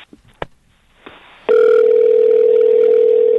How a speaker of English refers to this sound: All right, here we go. Here we go. Shh. And it's ringing. Okay, it's ringing.